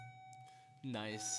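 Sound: bell ringing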